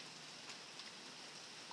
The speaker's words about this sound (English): I'm just doing it because it's raining outside and I'm on the porch smoking.